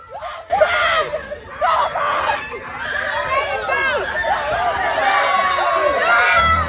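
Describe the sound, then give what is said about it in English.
A crowd of bystanders shouting and jeering loudly outdoors during a street fight outside a fast food restaurant, overlapping raised voices and yells continuing throughout with agitated, chaotic energy. “As you can hear there, people nearby were shouting and jeering before someone eventually tried to break it up.”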